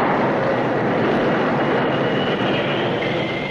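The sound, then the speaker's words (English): A Union Pacific train bound for Pine City, cresting Holly Hill, rumbles with a dense, steady roar for a few seconds as the engineer jams on the brakes, and a thin, high-pitched brake squeal creeps in faintly toward the end. No voices. “The first gray light of morning was spreading over the eastern sky as the Union Pacific train for Pine City labored up Holly Hill. Just as the summit was reached, and it began to pick up speed once more, the engineer jammed on the brakes.”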